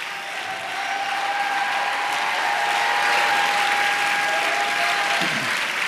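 An audience claps hard and continuously for about six seconds at a preacher's call to clap and shout, a dense, steady roar of applause with a faint sustained tone humming underneath.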